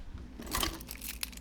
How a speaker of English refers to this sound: Keys, here we go.